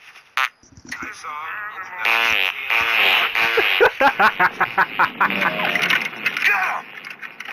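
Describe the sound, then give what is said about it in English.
Loud cartoon-style farting from a cartoon dog character: a short burst, then long wobbly, tonal blasts that break into a rapid string of short sputtering pops before trailing off. “That's just him farting. Also, this is him farting again, but listen.”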